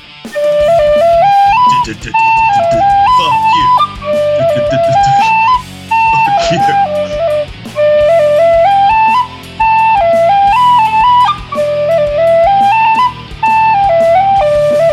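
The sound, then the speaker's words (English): A Celtic tin whistle plays a lively, bright melody in short phrases with brief pauses, stepping quickly between high notes, loud throughout. “You know, by the way, that I'm like the worst Celtic whistle player on the fucking planet.”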